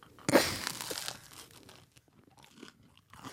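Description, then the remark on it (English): A sharp crunching bite into a toasted tuna melt sandwich, followed by a couple of seconds of softer, wet chewing sounds, with no talking. “Okay, I'm going to take a bite of it.”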